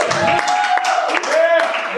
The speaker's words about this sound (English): A little round of applause, everybody.